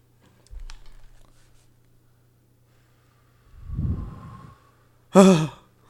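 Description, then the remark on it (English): A voice imitates wind with a soft, breathy whoosh that swells and fades, followed by a brief, louder voiced gust, all over a steady low hum with a few faint clicks. “Hold on, I'm going to do another wind noise.”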